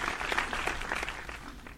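Applause-like clapping fills the moment: a steady patter of sharp, overlapping claps that stays fairly even in loudness for a couple of seconds before easing slightly.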